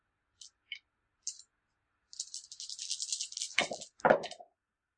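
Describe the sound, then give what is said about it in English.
A few light clicks, then dice rattle rapidly in a cup for a couple of seconds before tumbling out onto a table with a couple of sharp clattering hits. No voices. “These dice.”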